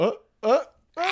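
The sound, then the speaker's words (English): Three sharp, voiced sneezes in quick succession, each a short loud burst, separated by brief pauses. “Bless you. My goodness.”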